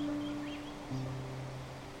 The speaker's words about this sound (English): You can't see it yet, but as you can hear, nearby is a wonderful waterfall that fills this place with the sound of flowing water.